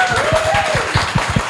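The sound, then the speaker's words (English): An audience bursts into sustained applause for the host's guests at a live show, many hands clapping in a dense, steady patter with a few sharper individual claps standing out, loud and continuous throughout. “Can everyone give my guests a massive round of applause?”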